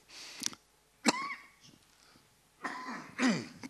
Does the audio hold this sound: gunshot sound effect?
no